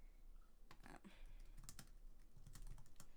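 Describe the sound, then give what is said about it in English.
Quick, irregular clicks on a computer keyboard tap out in short bursts, a crisp clatter of keys being typed with no voices over it. “I almost said it out loud as I was typing.”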